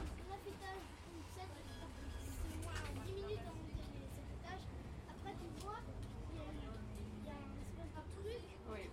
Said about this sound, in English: There's a lot of French people on this bus. Yes, honey. What are those kids saying? Something about airplanes, I think.